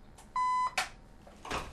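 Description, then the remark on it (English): A voice imitates a machine booting up: a single short, steady beep, followed by a couple of brief, breathy noise bursts. Fairly quiet overall, with no talking. “That right there is the sound of the machine booting up, getting you guys ready for some good deep electronic.”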